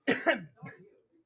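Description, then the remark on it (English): A loud cough with two sharp, harsh bursts in quick succession, followed by a softer, throaty third burst that trails off into quiet. “Your cough almost peaked the audio.”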